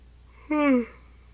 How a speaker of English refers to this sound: Excuse me. I had good sleep. I don't know why I'm yawning. I guess it's that 3 o'clock feeling.